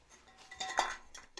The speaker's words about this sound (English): Let me move 3 of the 30 empty beer cans in this room.